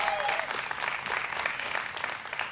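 A crowd applauds steadily, many hands clapping in a dense, even wash of sound that holds at a fairly constant level throughout, with no single claps standing out and no talking.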